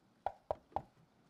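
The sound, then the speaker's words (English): Three evenly spaced knocks on a wooden door by Sherlock Gnomes, reaching up to just below the doorknob, sharp, each a short hollow rap with a brief decay, followed by quiet. “Sherlock Gnomes reaches up to his full height just below the doorknob and knocks on the door.”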